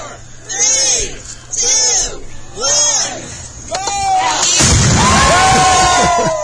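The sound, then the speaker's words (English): Several voices call out in rhythmic bursts, then dynamite placed in the ground at a groundbreaking ceremony explodes with a deep, heavy boom, blowing a big hole in the ground, and rumbles on for a couple of seconds while a crowd reacts underneath. “So rather than putting gold shovels in the ground, they put dynamite in the ground and blew a big hole in the ground.”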